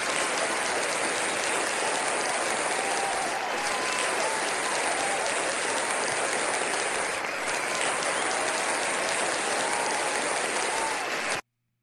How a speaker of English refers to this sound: Was this too much clapping?